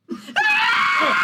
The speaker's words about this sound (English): A lady screams and you turn around.